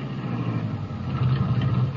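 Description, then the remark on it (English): A car engine rumbles low and steady as the car slows and pulls over on a wet old road because the back tire feels flat, settling into an idle with a slight swell in the engine note near the end; no one speaks. “It feels like the back tire's flat. Maybe I better stop.”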